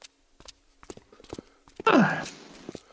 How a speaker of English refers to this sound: Footsteps. The bane of my editing existence.